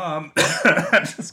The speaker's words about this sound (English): Is he coughing?